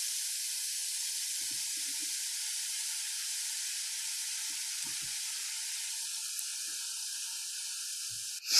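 Steady sizzling of food on a hot grill, a dense continuous hiss with faint crackles and pops throughout, no voices.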